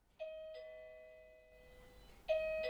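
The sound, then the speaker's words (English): A doorbell rings with a two-note chime, its bright tones ringing out and slowly fading before another chime strikes near the end. No one speaks. “So when a doorbell rings, a double chime catches me completely by surprise.”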